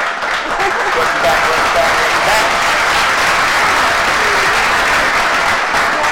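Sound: clapping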